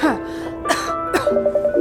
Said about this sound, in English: Cough is non-productive and dry.